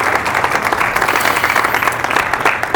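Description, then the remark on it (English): In a Catholic church, a crowd bursts into sustained, loud applause with scattered cheers, offered as praise to God: a dense steady wash of many hands clapping at once with no pauses. “And why don't we praise God by offering a little cheer right now for what God has done.”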